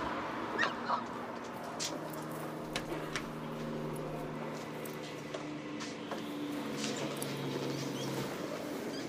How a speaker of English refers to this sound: Dog's in distress.